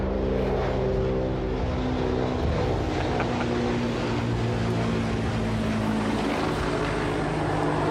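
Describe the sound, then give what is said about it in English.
A loud, steady mechanical drone of a helicopter overhead, with a low humming engine tone and rumbling rotor noise that holds constant throughout, no voices present. “It's a helicopter.”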